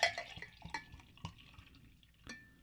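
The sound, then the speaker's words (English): Beer being poured from a growler: a few sharp glassy clinks with a brief ringing tone, mixed with soft splashing and dripping liquid. No one speaks. “Do you want to, here, once you open that, start pouring yourself some out of that growler.”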